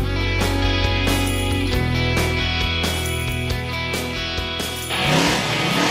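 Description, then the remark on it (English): A loud car engine revs near the end, cutting in after several seconds of punchy, rhythmic music with steady beats. “Start your engines.”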